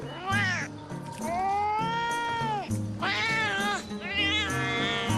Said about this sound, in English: Talking cat.